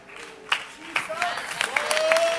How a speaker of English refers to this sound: I thought somebody would clap their hands because God is speaking to somebody.